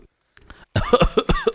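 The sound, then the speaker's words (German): A short, brief pause, then a rapid fit of loud coughing, four or five harsh spluttering coughs in quick succession, from someone who has choked on a drink. “Ich habe nicht Angst vor Scarecrow, deshalb räusper ich mich gerade nicht. Ich habe ihn einfach nur verschluckt.”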